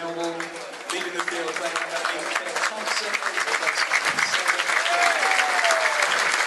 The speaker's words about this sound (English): Good applause for Ben Thompson. He's done well today.